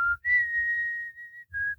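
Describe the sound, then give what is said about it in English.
A person whistles a slow, mournful melody from a sad movie: a short opening note, then a long sustained tone, then another brief note, with a faint low rumble underneath. “are you whistling Titanic right now? I am.”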